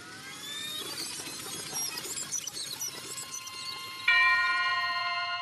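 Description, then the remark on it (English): A single dinner bell rings out sharply near the end, its bright metallic tone lingering and slowly fading, preceded by a busy wash of high chirping, squeaky sounds. “There's the dinner bell.”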